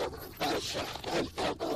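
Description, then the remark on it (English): A mean-looking dog barks repeatedly in quick, uneven bursts, four or five sharp barks in under two seconds, steady in loudness with no talking. “That dog does not shut up.”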